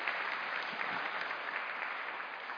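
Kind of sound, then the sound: crowd, round of applause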